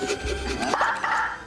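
A dog, Goddard from Jimmy Neutron, gives a quick run of short, sharp barks, bunched together over roughly a second against a faint background hum.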